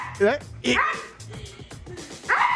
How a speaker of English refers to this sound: Every time she pulls the rope, it's like the bulldog. I didn't know a dog could make that noise.